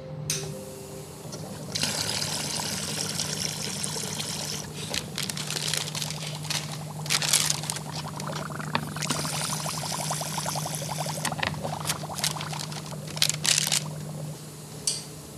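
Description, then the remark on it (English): Water gushes and splashes steadily from a hose being used to water plants, a broad hissing rush with a low steady hum beneath it, swelling and easing in bursts over about fifteen seconds, with no voices. “So I will do that with a hose.”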